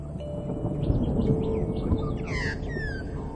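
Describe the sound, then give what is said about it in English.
An Australian magpie carols outdoors in a run of fluting, warbling notes that rise and slide, with a brighter burst near the end, set against a steady low rumble of wind or ambient noise. “When the first settlers people arrived in Australia and they were black and white birds, they called them magpies.”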